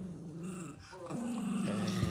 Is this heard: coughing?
no